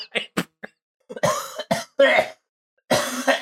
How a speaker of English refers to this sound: Oh, fuck. There's the choking cough laugh of the night. Oh, man.